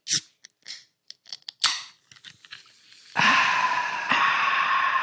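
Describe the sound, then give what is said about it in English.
A drink can is handled with a few sharp clicks and a crack as it opens, then a steady, loud fizzing hiss carries on to the end, swelling briefly partway through. “Could you hear the fizz on that?”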